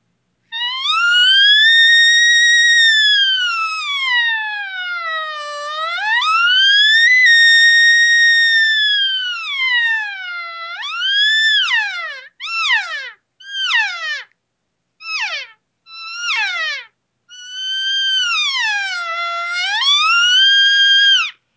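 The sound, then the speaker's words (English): A loud series of smooth sliding whistle-like tones sweeps up and down, then breaks into short, sharp descending chirps before settling back into longer calls: a practice up-and-down call series slowly built into an imitated cow call, with no talking. “So I'm going to do that little series I recommend to people, and then kind of slowly go into how that makes a cow call.”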